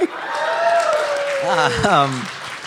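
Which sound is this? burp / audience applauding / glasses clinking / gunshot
audience applauding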